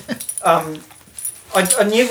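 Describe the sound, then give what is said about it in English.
A second dog gives two drawn-out whining yelps with a short pause between them, accompanied by a light metallic jingle like collar tags or keys. “That's the other dog.”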